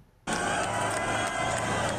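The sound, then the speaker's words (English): After a brief quiet moment, a large crowd in Rostov, Russia, bursts into loud, sustained cheering and shouting as Wagner mercenary forces leave and their leader is driven away, carrying on without a break to the end, dense with overlapping voices. “Some cheered Wagner's leader, Yevgeny Prigozhin, as he was driven away”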